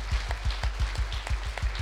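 A church audience claps hands together in a steady, quick rhythm during praise and worship, the sharp claps landing in time over a low, thumping beat and a constant hum underneath.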